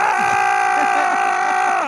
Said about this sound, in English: Why are you screaming at me? Calm down.